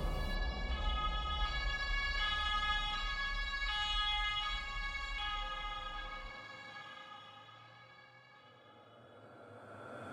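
Ambulance sirens wail loudly in a steady two-tone, rising-and-falling pattern over a low rumbling engine that drops away partway through. No one speaks.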